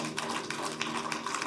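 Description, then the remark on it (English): A crowd claps hands for God in a dense, steady wash of sharp slaps, with loose rhythmic surges where many hands land at once. It stays loud throughout, and no voices can be heard. “Clap your hands for God.”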